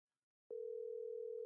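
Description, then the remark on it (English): After a brief silence, a steady telephone tone comes on abruptly over the line as a phone call is attempted: one unbroken, loud, even hum that holds without pause until the end. “the audio on the phone for some reason sucks, so I'm not going to bother too much there.”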